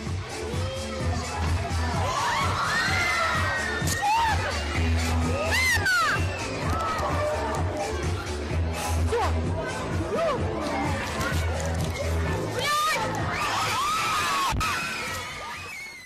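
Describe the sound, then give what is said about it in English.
A crowd of children in Ukraine screams and shouts chaotically for sixteen seconds after a loose circus bear jumped into the crowd, with shrill overlapping cries rising and falling over a loud, constant babble and occasional sharp bangs. “It jumped into the crowd full of children. Chaos ensued.”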